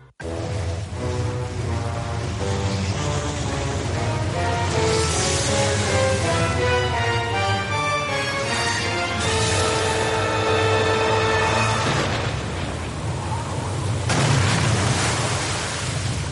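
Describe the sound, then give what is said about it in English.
A loud video game sound effect of Bowser spinning up, growing big and coming down: a dense, roaring wash with layered tones that swell and shift as it powers up, ending in a heavy crashing burst. No voices. “Well, that is the sound that Bowser makes when he spins up and gets all big and comes down to wreck your shit”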